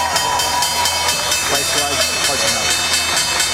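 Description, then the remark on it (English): A stock exchange opening bell, aired on CNBC's Real-Time Exchange, rings loudly and continuously, its rapid, evenly spaced clangs running over a dense, steady wash of crowd noise for the whole stretch. “There's the opening bell and the CNBC Real-Time Exchange.”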